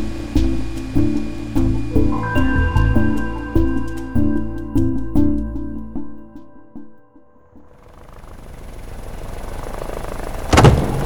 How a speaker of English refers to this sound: Step off, please. There's nothing out there. Step off the helicopter, ma'am.